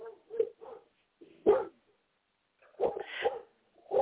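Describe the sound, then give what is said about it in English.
A dog lets out a series of short, sharp barks and higher whimpering yips in irregular bursts, with brief silent pauses between them and no talking. “I have to get my dog into a different room”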